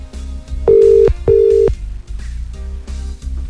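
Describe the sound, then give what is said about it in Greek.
A phone line rings out twice, two steady tone bursts with a short pause between them, clear and fairly loud over a low background of music or hum, with no one answering. “Άμα δεν το σηκώσει, βάλτο να το παίξει να τα ακούσουμε εμείς.”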